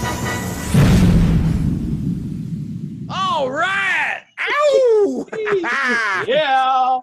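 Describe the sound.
A loud explosion bursts out near the start, its deep rumble fading over a couple of seconds, then expressive, wavering voices take over with drawn-out vocal sounds.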